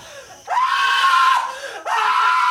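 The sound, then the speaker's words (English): A man screams loudly, two long drawn-out cries separated by a brief pause, the second cut off mid-scream. “He sure would scream out when his mama told him it was summertime and Christmas was 6 months off.”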